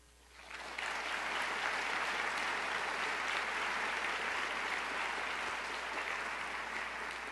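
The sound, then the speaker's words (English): A room full of people breaks into steady applause that swells within the first second and holds at a full, even level throughout, dense clapping with no voices standing out. “I should have said hold your applause to the end, but now it doesn't matter.”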